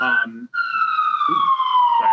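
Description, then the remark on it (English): A loud emergency vehicle siren wails in New York City, its steady tone sliding slowly downward in pitch as it passes, while people talk briefly underneath it. “They're like, that siren's like, say it, girl, tell everybody.”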